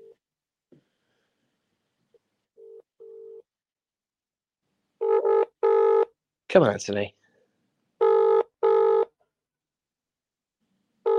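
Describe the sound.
An outgoing call on a phone line rings with a repeating double-burst ringing tone, starting faint and then louder, while a voice briefly speaks between the rings.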